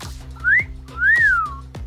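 A person whistles two short notes, the first sliding upward and the second rising then falling, clear and close over a low background hum with no talking.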